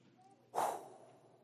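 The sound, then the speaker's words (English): A single forceful breath pushed out, a quick rushing puff that swells suddenly and trails off within half a second against a quiet background. “And 100 billion galaxies come into existence. Just with a breath.”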